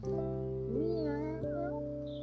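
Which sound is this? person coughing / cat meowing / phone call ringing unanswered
cat meowing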